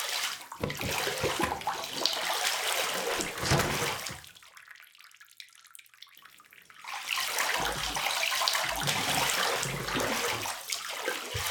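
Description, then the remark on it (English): Loud, steady rush of water pouring into a bathtub for a bath, briefly dropping to a quieter trickle midway before the full gushing flow resumes, with no voices. “I am taking a bath.”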